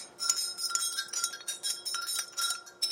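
A spoon stirs tea in a ceramic cup, clinking repeatedly against the inside with bright metallic taps in a quick steady rhythm, fairly quiet with no talking.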